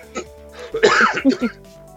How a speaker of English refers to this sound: Cough switch didn't work that time, did it?